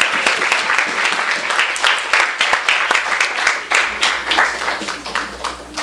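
An audience at a reading event at Skylight applauds steadily for several seconds, many hands clapping in a dense, bright patter with a few sharper individual claps standing out, no voices on top.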